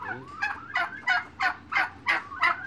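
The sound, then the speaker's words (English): Turkeys gobble in a rapid, rattling series of about seven loud, throaty bursts, with no talking. “One year, I saw a man selling turkeys on the street around Christmas.”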